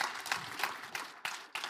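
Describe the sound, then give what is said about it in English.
Audience applause: a dense, steady wash of many hands clapping, with a few sharper bursts standing out, fairly loud and without any talking over it. “You guys give her a round of applause.”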